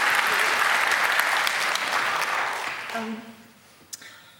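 Steady crowd applause, a dense wash of many clapping hands at even loudness, that thins and fades out toward the end as a voice briefly begins speaking.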